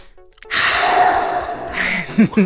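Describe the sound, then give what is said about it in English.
A single deep belly breath drawn in slowly and loudly, followed by a shorter, slightly voiced exhale at the end, done as a calming exercise. “Yeah, start by getting them to calm down and use the Swiss Army knife in the mental health toolbox. Deep belly breathing.”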